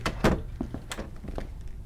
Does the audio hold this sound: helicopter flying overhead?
no